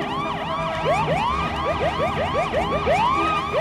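Several emergency vehicle sirens wail at once, their rising and falling tones overlapping in a rapid, chaotic yelp over steady traffic rumble, loud.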